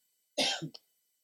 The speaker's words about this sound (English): All right. Definitely getting sick, by the way. It's three coughs.